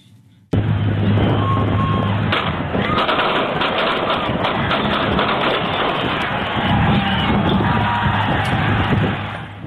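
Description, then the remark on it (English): A sudden burst of sharp gunshots cuts in in Kansas City just after the rally and parade celebrating the Chiefs' Super Bowl win, followed by loud, continuous crowd screaming and shouting with several more bangs scattered through the dense, chaotic noise until it eases near the end. “So those are the gunshots that was just after the rally and the parade celebrating the Chiefs' Super Bowl win.”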